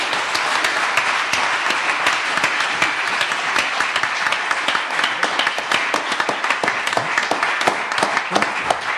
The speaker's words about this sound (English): Ladies and gentlemen, let's round of applause for our panelists.